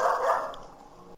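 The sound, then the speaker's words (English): A dog lets out a single loud bark in a hallway, its echo trailing off over the next second with no one speaking. “Oh, so my dog is really into whatever question is about to happen. I don't know what's going on in my hallway.”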